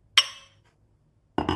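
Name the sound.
glasses clinking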